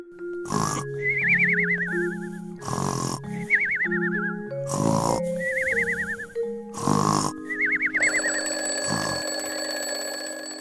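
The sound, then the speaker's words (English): Bedroom sounds: a person snores in four loud, rasping snorts while a warbling electronic beep repeats between them, then an alarm clock breaks into a steady, high-pitched ringing at the end. “That one's a little tricky, but I know I heard someone sleeping and an alarm clock, and those are bedroom or cuarto sounds.”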